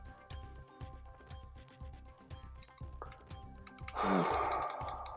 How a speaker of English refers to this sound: Who can I actually hear typing? That is me with a pen in my mouth, you absolute penos. Sorry, but it sounds okay. Like tack, tack, tack, tack, tack, tack. I mean, you're that old. I thought it was a typewriter.